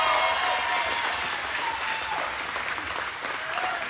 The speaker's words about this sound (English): One more round of applause for Casey. Round of applause for the event.